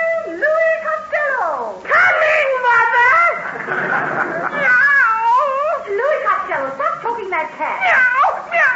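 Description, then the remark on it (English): A cat yowls loudly while being choked, a continuous run of strained, wavering cries that rise and fall in pitch with barely a pause between them. “Choking it, Ma. I'm trying to get the money out. Well, there's no money in that cat.”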